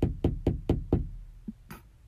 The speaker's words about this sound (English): She then claimed to have heard a tap on the glass case and a giggle from inside.